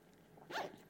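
A single quick zipper pull on a backpack, a short bright rasping burst that rises and fades within about half a second, with no talking.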